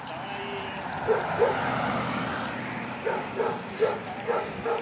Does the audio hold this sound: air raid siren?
no